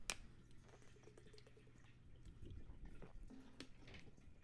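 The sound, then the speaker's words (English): Someone takes a quiet sip of water, with soft wet mouth clicks and a small swallow, no talking. “1 second, water.”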